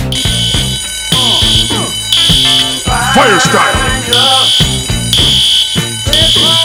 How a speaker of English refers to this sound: That is that's a fire drill.